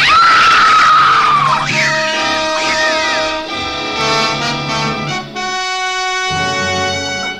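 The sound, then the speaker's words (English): A woman lets out a loud, high-pitched scream that wavers and falls away over about a second and a half, then swelling dramatic orchestral music takes over. “we all heard the screams coming from Diane's room”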